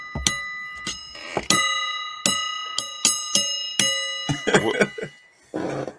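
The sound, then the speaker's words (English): Small metal bells worn by a person ring out in a series of bright, irregular strikes, each chime lingering briefly before the next, followed by a short burst of rustling at the end. “I actually wear bells.”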